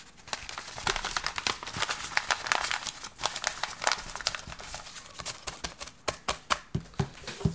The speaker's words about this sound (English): The second one is going to be rolling up a paper.